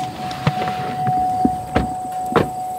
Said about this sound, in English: we hop into a pickup truck to see some goats at work.